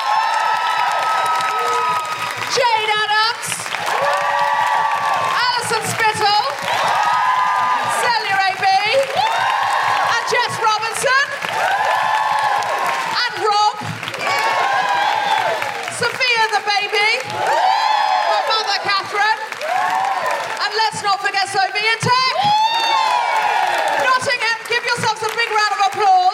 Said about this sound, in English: Can I have a big, big, big round of applause